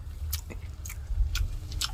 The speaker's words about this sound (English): The bird is really soft. You can't feel like the feet or beak or anything in your mouth as you're chewing.